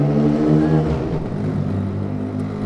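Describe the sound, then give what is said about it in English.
A motorcycle engine revs, a loud, steady throaty drone whose pitch rises and shifts as the throttle opens, sounding alone without any voices. “So, onto the motorcycle.”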